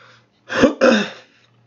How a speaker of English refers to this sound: Sorry. Clearing my throat.